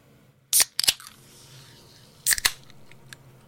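A drink can being cracked open and then drunk from: two pairs of sharp, bright clicks with a brief hiss, separated by a quiet pause and followed by faint soft sounds, with no talking.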